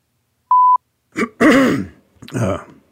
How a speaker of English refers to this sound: I may be clearing my throat a bit here today. I got some congestion.